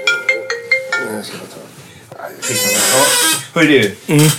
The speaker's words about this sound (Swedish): Ringer du? Vi pausar.